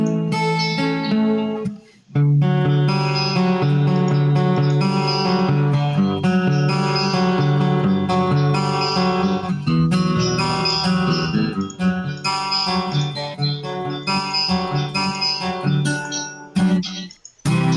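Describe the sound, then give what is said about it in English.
An acoustic-electric guitar strums chords with the chorus effect turned to maximum, a heavy, shimmering chorus sounding wide and swirling, played fairly loud with brief pauses between phrases and no talking. “We'll max out the chorus.”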